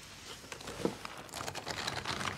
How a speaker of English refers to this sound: Even the paper sounds kosher.